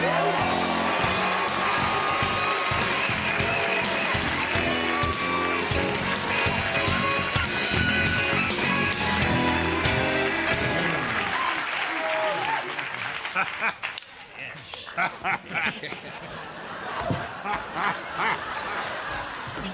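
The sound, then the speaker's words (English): A studio audience cheers and applauds in a loud, dense, sustained roar of clapping and shouts as actor George Wendt, who plays Norm on Cheers, is introduced as a talk-show guest; it thins out in the last several seconds to scattered claps and voices. “Let's turn it up for Mr. George Wendt.”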